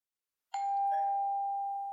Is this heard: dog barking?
no